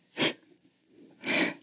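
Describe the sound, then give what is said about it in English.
Two quick, shaky breaths about a second apart, fairly loud, with a faint catch between them, from a woman crying in bed at night, her breathing quick and shallow. No one speaks. “She faces away from Rose and begins to cry. Her breathing becomes quicker and shallower as tears streak down her face.”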